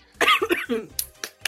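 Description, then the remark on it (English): A person coughs, a few short, harsh bursts following some throaty voiced sounds, moderately loud and over in a moment. “For no, I just coughed because I needed to cough.”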